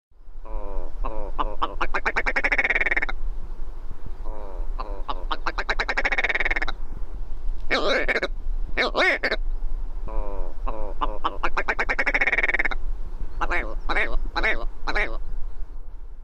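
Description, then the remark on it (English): A willow ptarmigan calls in a field recording: several bursts of fast, rattling, throaty croaks, each series racing along before pausing, over a steady low background rumble. “Here's a field recording of the bird, so you can judge for yourself.”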